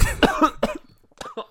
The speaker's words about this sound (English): And then he coughed. Here, let me help out while he's coughing.